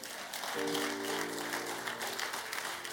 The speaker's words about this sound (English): The place is quiet though. Oh, it's a nice message. Clap for me.